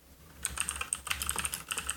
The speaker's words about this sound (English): Can you hear my typing? I was just clarifying some things in the chat.